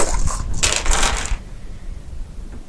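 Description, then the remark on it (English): Dice clatter and rattle across a hard surface in a quick burst lasting about a second, then settle, leaving only faint background noise with no one speaking. “Which is a shame because I have 2 hard dice in it.”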